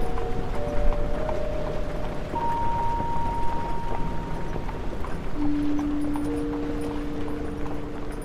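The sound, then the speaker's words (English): A horse-drawn coach rumbles steadily into Bodmin in wind and rain, hooves clip-clopping over a dense, continuous rattle of wheels, with drawn-out creaking squeals rising and fading through it. No one speaks. “And so the coach rumbled into Bodmin, grey and forbidding like the hills that cradled it.”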